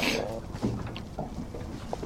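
Steady low rumble and wash of water around a fishing boat, with a few faint knocks and clatters and a breath of wind, no one speaking, as a fisherman pulls a line of scallops to the side of the boat.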